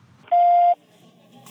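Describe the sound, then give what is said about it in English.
A single steady electronic beep at a fixed pitch in a recording booth, lasting under half a second, loud, signalling the start of recording, followed by quiet room tone with a faint rustle at the end. “Please do so after the beep and walk out of this booth with your head held high, feeling lighter and shame-free.”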